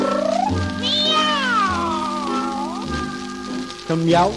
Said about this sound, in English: But he swears it sounded like two cats, yeah, singing a duet.